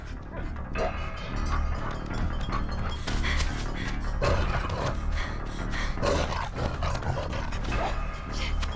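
A dog growls and barks in bursts over a loud, dense film soundtrack, the snarls rising and falling through a rumbling, busy mix for several seconds.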